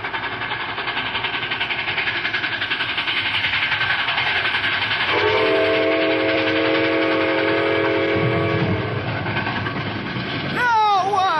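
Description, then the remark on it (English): A train rumbles steadily as it approaches, its clattering roar filling the scene, with a long, loud whistle blast sounding midway before the noise surges at the end. “See if it make them come to their senses and stop this train.”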